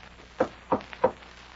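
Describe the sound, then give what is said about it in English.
Three firm knocks on a door in a steady, evenly spaced rhythm, each a dull, solid rap against a quiet background with no voices. “Oh, just the way I got a knocking.”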